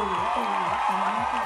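A crowd applauds and cheers in a steady, dense wash of clapping and shouting that holds at a constant loudness, with rising and falling vocal whoops threaded through it.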